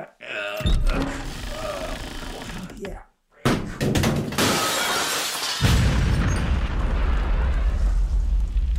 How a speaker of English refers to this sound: Yes. There's been an explosion. There's a tent on fire over there.